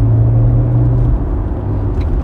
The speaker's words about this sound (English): And that bus gave no F's. He just pulled out in front of 8 cars.